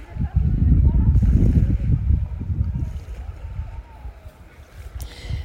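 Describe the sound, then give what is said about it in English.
Small wake waves from a boat lap and slosh steadily against a lake shoreline, a continuous low, splashy wash with wind rumbling over it that eases off toward the end. “Do you hear the sound of the waves?”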